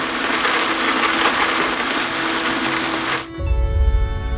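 An electric blender runs loudly with a dense, steady whirring roar, then near the end shifts into a tonal motor whine with a deeper rumble underneath.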